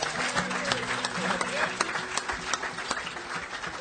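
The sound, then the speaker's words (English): An audience breaks into steady applause for a singer and a band, marking 20 years since he started the band: a dense crackle of many hands clapping at once, with sharper claps popping out and some whoops and indistinct voices mixed in. “I think that deserves a round of applause right there.”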